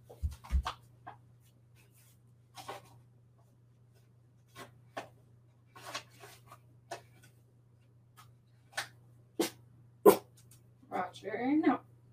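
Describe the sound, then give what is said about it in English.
A dog lets out a short bark near the end, after scattered light clicks and taps, all over a steady low electrical hum. “No. No barking.”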